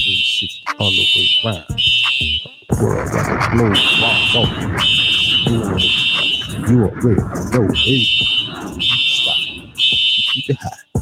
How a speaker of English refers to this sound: Fire alarm going. Fireman. You hear it, man.